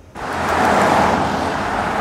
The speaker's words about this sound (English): Traffic on Granville Street can be deafening. Six lanes of rush hour exhaust spewing at palatial homes all day.